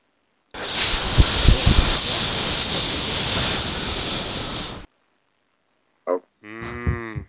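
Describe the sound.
A voice imitates hissing steam as a sound effect introducing a Steam deals segment, with one loud, steady hiss that lasts about four seconds and then cuts off. After a pause comes a short click and a brief low, moo-like vocal sound.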